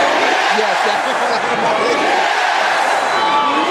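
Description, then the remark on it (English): A large crowd roars and cheers continuously in the background of a clip of Hulk Hogan saying "Yeah", a dense wash of many voices blending together at a steady, loud level for the whole few seconds. “To me, it's actually the crowd in the background that really gets me.”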